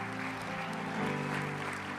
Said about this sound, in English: Somebody give the Lord a good hand clap.